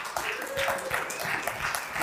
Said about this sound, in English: All right, I honestly didn't expect applause for that one.